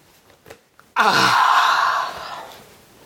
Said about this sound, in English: It's like half midnight. It's like half midnight. Indeed is half midnight. I think I'm allowed to yawn at half midnight. No, you're not.